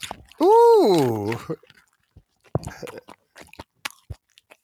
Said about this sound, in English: So Rate That Crunch. What is that out of 10? What would you say that crunch is for the Snyder Twister Pretzel Seasoned? I think it was light on crunches for me. I would say it was a 6 crunch, but it was a 9 crunch.